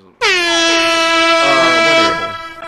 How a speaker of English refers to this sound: Hit yourself with the air horns